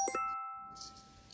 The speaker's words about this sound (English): And Yes, that is your text message.